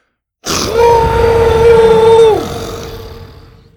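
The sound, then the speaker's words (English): A loud, bellowing roar from Buck, a yellow-striped dinosaur, bursts out alone after a brief silence in an arena with stone arches. It holds steady for about two seconds before dropping off into a fading, echoing tail. “Filling his yellow-striped chest with air, Buck raised his head to the sky and let out a bellowing roar that made the arena's stone arches vibrate.”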